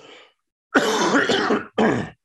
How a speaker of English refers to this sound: You have to excuse me. I still have not gotten over this cough and this cold.